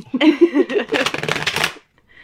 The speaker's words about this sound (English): So I shuffle the deck.